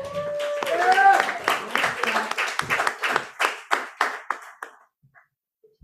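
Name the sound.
audience applause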